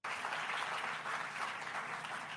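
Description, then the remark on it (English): A crowd applauds the Tribeca team steadily, a dense wash of many hands clapping at once that holds at an even, fairly loud level throughout, with no voices heard. “Let's give a big round of applause to the entire Tribeca team who really did a great job.”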